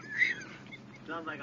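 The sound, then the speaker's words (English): A short, squeaky fart with a honking, quack-like tone, followed by a second rougher burst, both moderately loud. “Sorry, I farted.”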